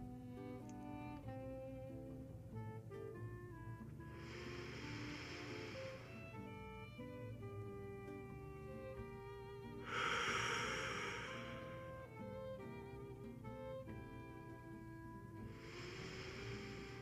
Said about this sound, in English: Let's take 3 deep breaths, breathing into the stomach, holding at the top just slightly.